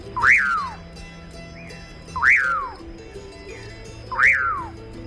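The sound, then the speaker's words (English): A male common pauraque (Nyctidromus albicollis) sings its typical 'puyir' song: three clear, evenly spaced whistles, each rising sharply then slurring down, carrying over a steady low background hum. “Here's a typical puyir song of a male common parroquet.”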